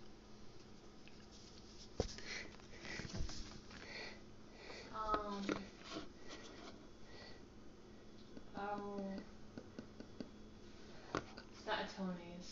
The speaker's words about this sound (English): Do I have another sniff? You may.